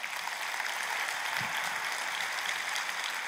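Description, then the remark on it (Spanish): A church audience claps together in a steady, dense wash of applause at moderate loudness for a few seconds, with no one speaking over it. “Date un aplauso.”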